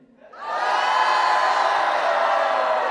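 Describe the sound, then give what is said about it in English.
A large crowd lets out a loud, sustained shout that swells quickly from near silence and holds at full volume, many voices roaring together. “As soon as the people heard the sound of the trumpet, the people shouted.”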